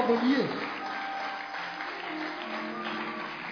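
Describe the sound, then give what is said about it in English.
An audience claps steadily at the preacher's call to clap, a dense wash of many hands that holds an even level throughout, with a faint murmur of voices and a low hum beneath it. “For clapping, clap well.”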